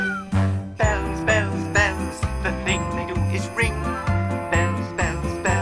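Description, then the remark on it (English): Bright ringing bells chime over a bouncy musical backing in the verse of a song about bells, with repeated struck tones and a steady, pulsing low bass line running through the whole passage. “Bells? Bells! What was all that?”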